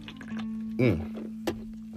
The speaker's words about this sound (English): Gotta take a sip right there on that one. That's some water.